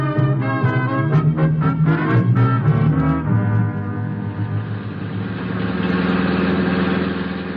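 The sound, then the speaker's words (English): A car engine in the radio drama Dangerous Assignment runs at a steady idle, sputtering with a few uneven pulses at first before settling into a continuous rumble. A bullet has gone through the car's front windshield. No voices are heard. “My poor car.”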